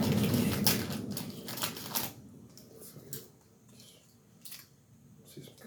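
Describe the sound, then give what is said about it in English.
Crisp snipping of scissors cutting paper for arts and crafts, making a small Cracker Jack pack: a dense burst of rapid crunchy cuts at first, then a few scattered slower snips with quiet pauses between. “Are you doing arts and crafts now? Yeah, I'm about to make a Cracker Jack pack.”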